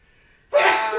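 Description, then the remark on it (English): A single sneeze: a quiet intake of breath, then a sudden, loud, breathy burst that holds for about half a second, with no talking. “Bless you.”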